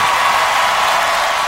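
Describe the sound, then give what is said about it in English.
Steady, dense applause from many hands for the queer and LGBTQ community, a loud and continuous wash of clapping with no voices over it for the whole moment. “Round of applause.”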